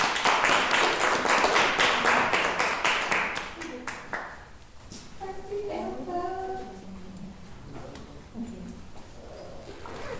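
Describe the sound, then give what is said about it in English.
An audience claps in a dense, steady round of applause for about four seconds to welcome an author and motivational speaker at her first book signing, which then fades out as a single voice begins speaking. “Let's give us a big round of applause.”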